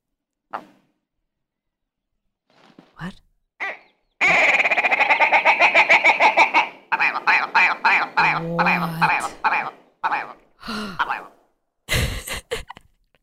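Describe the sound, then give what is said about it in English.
A bird's loud mating call: a long run of rapid, pulsing, nasal croaks that break into several shorter bursts, with a few brief scattered sounds before and after. “But the best part of these birds is absolutely their mating calls.”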